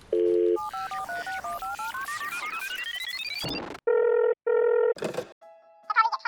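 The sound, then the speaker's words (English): A phone call is placed to the Lego company: a quick run of rising electronic keypad beeps, followed by two loud, evenly spaced ringing tones on the line and a short burst of a higher chirping tone at the end. “I'm going to give Lego a call on our super secret Lego phone.”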